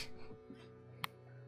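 A dog gives one short, sharp bark at a distance, quiet against a steady low background hum, with faint whimpering sounds around it and no one talking.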